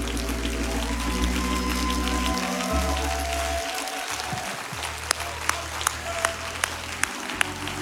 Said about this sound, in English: Can we clap our hands one more time unto the Lord?